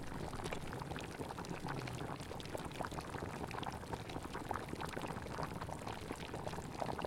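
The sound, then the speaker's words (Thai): Steady, dense bubbling and gurgling from the heating pad of a Chinese-style self-heating meal box runs throughout, a continuous fizzing simmer with rapid irregular pops and no voices. “ตอนนี้เสียงแบ็คกราวด์ของเราก็จะเป็นเสียงบุ้งบุ้งบุ้งบุ้ง”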